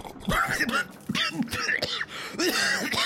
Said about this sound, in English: Thaddeus lifts the flagon to his lips, then coughs and sputters.